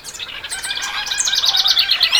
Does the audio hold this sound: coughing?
no